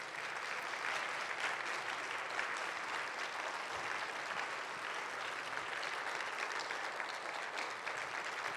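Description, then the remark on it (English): An audience applauds the fathers standing in the room, a steady, dense, even wash of clapping from many hands for several seconds at a constant moderate level with no voices on top. “And the rest of us, let's applaud these men for making it a priority.”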